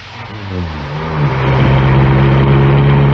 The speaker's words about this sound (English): Listen. Car's outside. Quick.